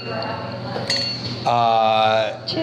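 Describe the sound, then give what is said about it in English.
Wine glasses clink together in a toast before tasting Caveman Red wine, a couple of bright taps followed by a clear, sustained ringing tone over a low background hum. “I need to toast this up because I haven't tasted it yet.”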